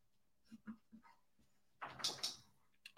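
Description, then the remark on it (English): Dogs whimper with a few short, soft yips, then give a louder, rough burst of barking, all fairly quiet and without anyone talking. “The dogs are not fans.”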